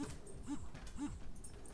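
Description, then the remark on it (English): Dogs whimpering excitedly in a home hallway, short rising-and-falling whines repeating about every half second, fairly soft against a low background rumble, with no one talking. “And my dogs are very excited about whatever it is we're doing here.”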